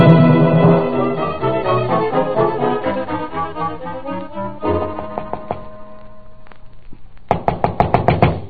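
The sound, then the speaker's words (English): Dramatic music plays, then near the end a quick series of about six sharp knocks on Mr. Dakin's door rings out, loud, with the music still lingering underneath. “Well, looks like Mr. Dagan's not receiving. Try the door.”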